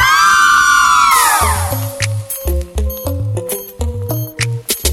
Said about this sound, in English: All of the girl them, I wanna hear you scream.